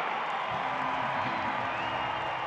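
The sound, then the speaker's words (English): An NBA arena crowd on its feet cheers during a Utah Jazz versus Dallas game in a loud, continuous roar that holds steady throughout, a dense wash of voices with scattered whoops and no clear words. “Crowd's on their feet.”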